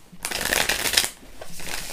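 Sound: shuffling tarot cards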